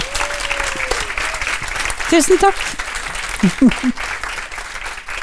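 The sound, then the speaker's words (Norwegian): Steady audience applause for a singer, one of the biggest pop stars of the 1980s, a dense wash of clapping from a crowd, with a woman's voice briefly speaking over it near the end. “Klapp litt for ….”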